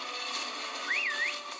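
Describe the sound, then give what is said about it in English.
A single short whistled note rises, dips and rises again over steady background hiss, sounding thin and a little wobbly like an unpracticed attempt at whistling. “Obviously, I can't whistle.”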